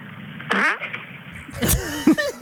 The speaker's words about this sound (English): I've been prolific with the farting. He sent me this on Friday. The caption just said, it smells so bad. Taco Bell drive-thru.